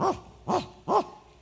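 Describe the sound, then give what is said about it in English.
A voice imitates a dog barking: three short, loud woofs, evenly spaced about half a second apart, with nothing else underneath. “Turn it to the dog. The dog will,”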